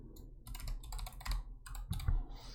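Rapid, uneven clatter of keys on a computer keyboard, close and fairly steady, with a few heavier clacks near the end and no voices.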